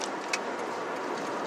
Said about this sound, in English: Oh, I just got in a lane that's going away. Traffic, man.